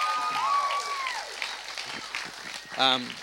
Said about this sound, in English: Hey, why don't you give your pastors a round of applause?